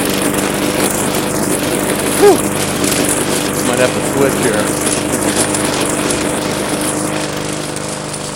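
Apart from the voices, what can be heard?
lawn mower engine running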